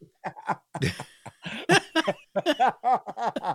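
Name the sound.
cough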